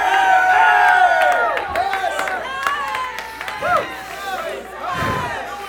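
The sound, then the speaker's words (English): A large crowd shouts praise and glory in a loud, sustained roar of many overlapping voices, with pitched cries rising and falling and scattered sharp claps breaking through. “And the heavens begin to reverberate with praise and glory.”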